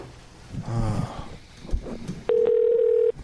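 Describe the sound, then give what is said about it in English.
An outgoing phone call's ringing tone: one steady, loud electronic burst lasting under a second, following brief muffled vocal sounds and rustling. “Just because we're calling him? Let's keep calling him over and over.”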